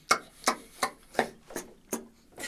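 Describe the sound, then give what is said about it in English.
A banana being peeled: seven short, crisp tearing sounds in a quick, even rhythm, each a bright, papery rip that fades fast, with no voices. “All right, so the banana goes.”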